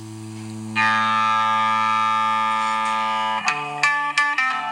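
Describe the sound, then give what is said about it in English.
A sustained electric guitar note swells into a bright, buzzing feedback drone for about three seconds, then breaks into a quick, rhythmic riff of sharply plucked notes, the opening riff of a song. “So what we're hearing there is feedback.”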